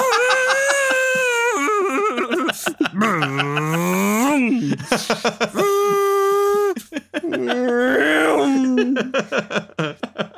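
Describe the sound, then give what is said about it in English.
The new Jaguar I-Pace electric car's synthetic driving sound, designed by Richard Devine, plays loudly: layered harmonic tones that swell and glide up and down in pitch, with short breaks, resembling a futuristic engine hum. “an exclusive copy of all Richard Devine's sounds for the new Jaguar I-Pace”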